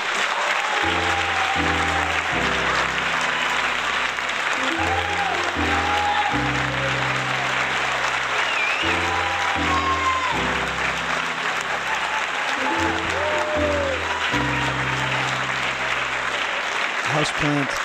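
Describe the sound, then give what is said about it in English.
Loud, sustained applause from a large studio audience welcoming the first guest, Houseplant, on the show Mike Talks to Plants, a dense steady clatter of clapping with upbeat music playing underneath. “Let's give a warm round of applause to my first guest, Houseplant.”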